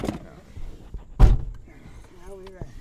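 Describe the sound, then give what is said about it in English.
A heavy truck door thuds shut once, loud, amid shuffling and movement sounds as people get into the truck, followed by a brief rising whine, with faint voices underneath. “We get in the truck.”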